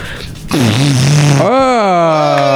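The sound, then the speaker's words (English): A long, loud wet fart from a woman bending over with her backside at the microphone, sputtering for about two seconds, its pitch bending upward toward the end before it trails off. “Just give us your best fart.”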